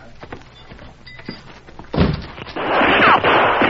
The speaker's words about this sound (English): He fired at us.